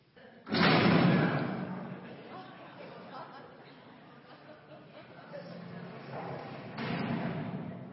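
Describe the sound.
A heavy metal jail door in a prison slams with a loud, echoing clang, followed by reverberant rattling and a second metallic clunk as it locks, with faint background voices.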